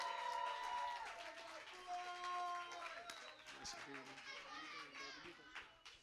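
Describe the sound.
A lively crowd claps and cheers to welcome a performer, with scattered sharp hand claps mixed into excited shouting and high-pitched voices, loud throughout.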